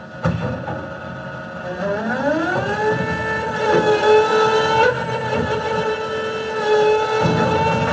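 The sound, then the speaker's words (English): A garbage truck idles in the morning, its low engine rumble joined by a mechanical whine that climbs in pitch and then holds steady, fairly loud throughout with no voices. “The garbage truck in the morning.”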